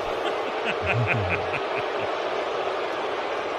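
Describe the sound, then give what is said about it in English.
A stadium crowd boos quarterback Zach Wilson as he walks off the field after the first half, in a steady, loud roar. Low, drawn-out voices stand out at the start before blending into a continuous wash of crowd noise. “And as he walked off the field after the first half, he got booed.”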